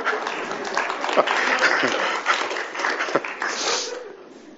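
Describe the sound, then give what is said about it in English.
An audience applauds the technician with a dense, steady wash of clapping that lasts about four seconds before tapering off, with a few voices mixed into the noise. “Give it a round of applause to the technician over there, please.”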